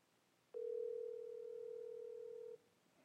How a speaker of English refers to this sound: Let me do it. I'll just do it through my phone. It's ringing.